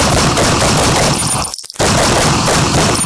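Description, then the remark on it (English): Gunshots fired at Floyd in Mayberry: a dense, loud barrage of rapid shots blurs into a continuous roar, cuts out for a split-second pause just past the halfway point, then resumes just as intensely. No voices. “Floyd, I'm going to have to shoot you.”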